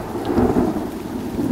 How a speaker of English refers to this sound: Oh, no, rain.